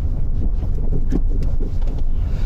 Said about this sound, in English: I'm just pulling into the car park.